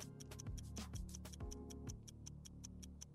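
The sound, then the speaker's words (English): A 60-second countdown clock timer for a quiz ticks steadily and briskly, sharp even clicks repeating several times a second over a low sustained musical tone, with no voices. “All right, the clock will start after I read the first question. Please give me 60 seconds on the clock.”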